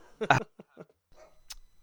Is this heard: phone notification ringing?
no